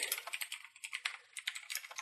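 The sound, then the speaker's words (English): Rapid typing on a computer keyboard, a steady patter of crisp key clicks with irregular rhythm and no voices. “All the typing you're hearing on my end is me experimenting with something, by the way.”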